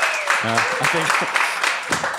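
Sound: audience clapping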